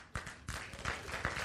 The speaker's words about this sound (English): All right. I didn't expect a clap, but yeah.